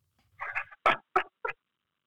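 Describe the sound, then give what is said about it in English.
Someone coughs after water goes down the wrong pipe: a short sputtering gasp followed by three sharp, harsh coughs in quick, even succession, fairly loud, with no talking. “Water went down the wrong pipe there.”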